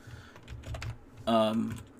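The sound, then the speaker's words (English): Rapid, irregular clacking of keys on a computer keyboard, fairly soft, as someone looks up fighter Alexei Oleinik's record, followed by a brief burst of a voice near the end. “Sorry, I didn't realize you guys could hear me typing.”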